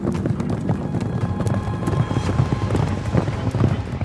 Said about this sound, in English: Within minutes, all the Hessians came out of the stables on their horses.